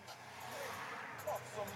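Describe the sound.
Steady low road rumble and engine drone from inside a moving car, a continuous hum with faint, indistinct voices briefly rising over it.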